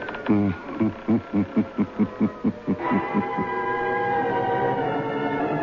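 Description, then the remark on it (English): A creaking door sound effect for the radio program Creaking Door: a quick series of rhythmic groaning creaks, then one long, drawn-out strained creak that holds its pitch until the end. No one speaks. “Through the creaking door? Of course.”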